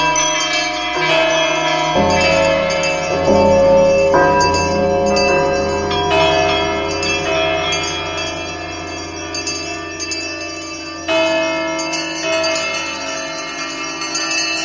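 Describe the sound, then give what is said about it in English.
Many bells throughout a house clang together loudly and continuously, their overlapping metallic tones forming a dense, ringing clamor that swells and persists throughout with no voices present. “But soon it rang out loudly, and so did every bell in the house.”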